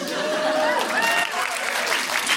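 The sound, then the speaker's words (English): Steady audience applause, many hands clapping in a dense, even wash of noise with a few faint whoops or cheers rising above it. “I feel you shouldn't applaud that, but I understand why you do.”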